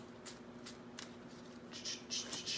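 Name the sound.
shuffling tarot cards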